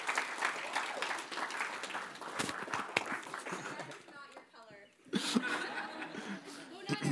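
An audience applauds steadily, a dense patter of many hands mixed with some chuckling. The clapping briefly thins out near the middle before swelling back up strongly.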